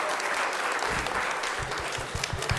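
A group of people clapping together, a dense steady patter of many overlapping handclaps at an even loudness, with a few sharper individual claps standing out toward the end.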